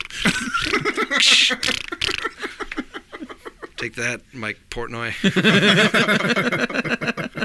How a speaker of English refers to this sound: Rapid fire. That's awesome. Farts.